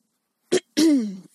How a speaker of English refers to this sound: I clear my throat.